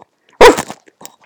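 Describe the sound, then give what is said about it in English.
A dog lets out one sharp, loud bark on the command "speak", followed by a couple of faint, soft noises in otherwise quiet surroundings. “Good, speak!”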